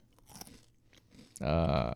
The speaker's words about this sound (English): Why are you chewing your fucking food while you talk and doing it in the fucking microphone?